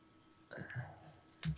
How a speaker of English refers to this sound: clicked a pen and grabbed his paper.